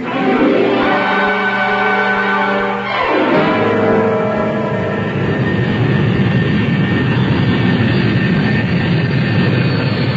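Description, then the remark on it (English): A loud airplane takes off, its engines roaring with a rising whine that shifts in pitch before settling into a steady, broad rumble that fills the scene. “I had to see that plane in the sky before I'd leave.”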